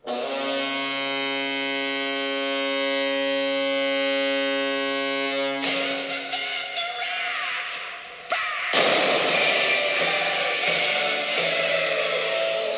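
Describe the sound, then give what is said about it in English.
A Columbus Jackets hockey arena cannon fires: a long, steady horn-like drone gives way to rumbling noise, then one sharp, loud blast bursts out and is followed by a sustained roar. “It's time to fire the cannon, and it's time to put on your jackets.”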